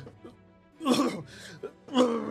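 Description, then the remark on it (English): A voice acts out a fit of uncontrollable coughing and sneezing: three harsh, breathy bursts in quick succession, fairly loud, after a few quiet vocal sounds. “As he just sort of collapses into the ground and coughing and sneezing uncontrollably, as it's written on the tin.”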